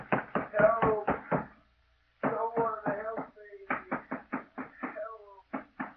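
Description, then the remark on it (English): Heavy, rapid pounding on a locked door in several frantic bursts with brief pauses as a man shut in a room tries to break it down, while a muffled voice shouts over the blows. “Let me out of here. I'll break the door down.”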